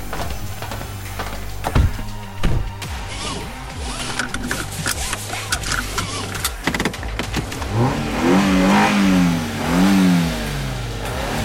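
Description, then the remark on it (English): The engine of Carface, a living car, revs hard and accelerates, its pitch climbing and falling in repeated surges, mixed with loud rattling, crashing and mechanical clatter throughout as it plows through walls, machines and statues. “Our living ride cranked his speed and his brights, plowing through walls, machines, statues, and every and anything in between.”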